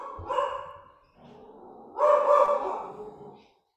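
A dog barks twice, each bark drawn out and fairly loud, with a short pause between them and no talking.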